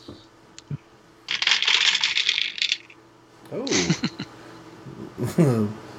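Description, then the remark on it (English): Colored game dice (three yellow, one blue, one red, one purple, one black) clatter and rattle across a hard table in a lively burst lasting over a second, followed by a couple of short vocal exclamations. “Well, the good news is I got something on every dice.”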